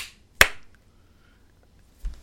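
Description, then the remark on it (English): A group of people clap once together on a count of three, one sharp, loud crack with a brief tail, followed by quiet and a soft low thump near the end. No one speaks. “Can everybody clap? Because I'm gonna edit that big breakout.”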